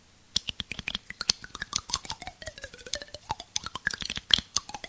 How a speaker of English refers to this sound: I came up with a new slide whistle sound. Check this out.